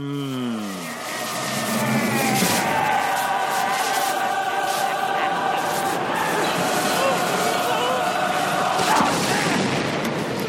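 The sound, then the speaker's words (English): A loud Star Wars Force lightning ball explosion from the Yoda versus Palpatine fight: a falling electronic whoosh gives way to a dense, crackling roar with booming rumbles that stays intense and sustained for about ten seconds. “Up next, the Force Lightning Ball explosion with Yoda versus Palpatine.”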